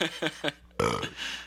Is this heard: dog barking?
no